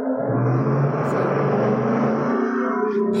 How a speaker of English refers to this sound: Was one of you guys in like a garage or something? Is that? No, I'm sorry. There's motorcycle going through right by here.